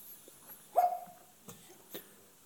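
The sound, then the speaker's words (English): A single short sneeze, a sharp burst with a brief voiced tail, followed by two faint clicks in an otherwise quiet background with no talking. “Bless you.”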